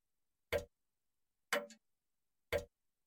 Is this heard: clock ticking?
yes